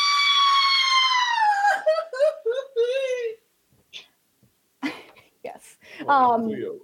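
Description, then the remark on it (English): A loud, high-pitched acted scream rings out during a role-playing game session, sliding downward into choppy, wailing bursts before breaking off. After a short pause, a few brief vocal sounds and another rising cry follow. “You let out a rather ferocious scream and then faint on the ground.”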